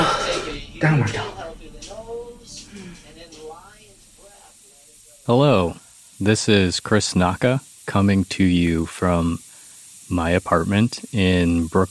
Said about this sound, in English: That sound you hear is my steam radiator.